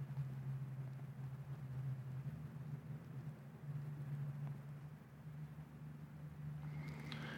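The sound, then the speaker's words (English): A logging truck engine miles away drones in a low, steady hum that swells slightly and fades, layered over the constant rush of a creek about 50 feet away. No one speaks. “And the noise from that logging truck is even louder than the rush of the creek.”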